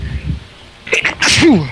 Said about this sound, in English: Oh. Sneeze.